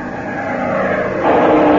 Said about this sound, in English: Plane diving at 5 o'clock.